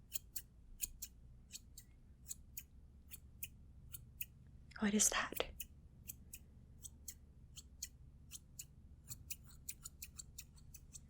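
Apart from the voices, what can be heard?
scissors snipping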